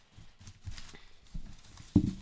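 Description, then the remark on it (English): Paper slips naming people and traits, shaken in a hat before names are pulled, make an irregular, soft rustling patter, like scattered light clapping, ending with one louder thump and a brief flurry. No one speaks. “Okay, so let's shake this bad boy up because you had a lot in there before I put any of mine in there.”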